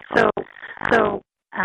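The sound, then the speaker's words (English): Muffled, tinny voice over a phone line that keeps breaking up, with short garbled bursts of speech cut off abruptly by brief dropouts and a moment of dead silence. “Yeah, it's clear, but then it goes in and out.”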